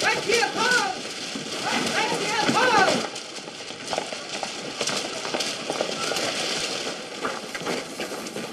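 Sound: horse walking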